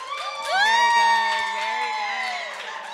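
A crowd cheers and whoops loudly, many voices rising together into sustained high-pitched shouts, with clapping mixed underneath for about three seconds.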